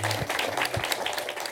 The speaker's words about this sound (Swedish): När teatern är slut så applåderar folk.